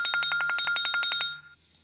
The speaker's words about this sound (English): Bro, if this is the variant calling my phone, bro. It's definitely the fucking variant.